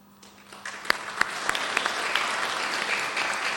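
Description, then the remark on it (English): Audience applause for the staff, volunteers and performers at the Songs and Praise event starts softly and swells into steady, dense clapping from many hands, with a few sharp individual claps standing out early on. “And of course, a big thank you and round of applause to all our staff, volunteers, and performers.”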